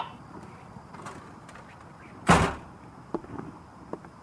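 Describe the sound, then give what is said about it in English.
A front door opens and closes with one loud, sharp bang partway through, followed by a couple of faint clicks from the latch. No one speaks, and the background stays quiet. “Just get out the front door here.”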